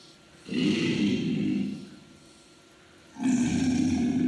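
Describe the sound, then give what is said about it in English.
Two deep, rumbling, low-frequency alligator growls, each swelling up strongly and holding for about a second, separated by a quiet pause; loud and resonant with a rough, guttural texture. “This alligator, low frequency, really low.”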